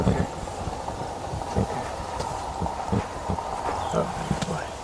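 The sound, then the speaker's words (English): A horse being trained in a film scene by a rodeo champion character. Its hooves thud and clip-clop in an uneven rhythm over a steady outdoor rumble, with scuffs and shuffling between the steps. “To set this up a bit, this is a scene where the main character Brady, a rodeo champion recovering from a head injury, played by Brady Jandreau, is working to train a horse.”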